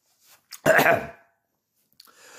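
One loud cough bursts out after a short intake of breath, harsh and rough, then fades into silence before a faint rustling noise near the end. No one speaks.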